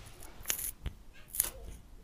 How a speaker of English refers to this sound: It's a pencil sharpener.